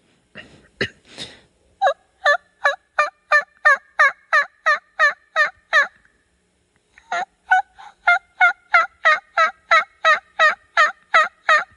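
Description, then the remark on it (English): Two loud runs of rhythmic turkey yelps, about a dozen evenly spaced notes each, separated by a brief pause, imitating a hen turkey's call in the yelp category of a turkey calling contest put on by the National Wild Turkey Federation. No talking. “absolutely knew what a hen turkey was supposed to sound like.”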